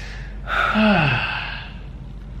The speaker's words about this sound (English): And just one quick life hack that will bring value to you guys is just take one deep breath.